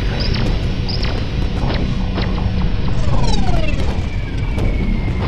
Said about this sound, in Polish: Huk, wystrzał, ryk wybuchu. Tak to się zaczęło.